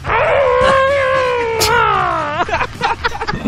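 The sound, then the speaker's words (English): Someone mimics a cat fight with their voice: a long, wavering, nasal yowl that rises and falls, then a string of short, breathy hissing and spitting bursts, loud. “Growl and hiss like you're in a cat fight.”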